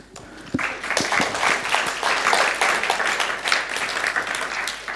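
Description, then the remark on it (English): A crowd breaks into applause for a woman after her first time speaking in front of them, dense overlapping claps that swell quickly and hold steady at a fairly loud level for several seconds, with no one speaking over it. “My wife gets up here the first time and gets a round of applause.”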